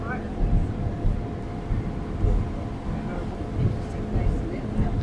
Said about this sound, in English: We're now climbing quite steeply, our engine working on the rack.